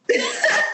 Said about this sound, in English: Bless you.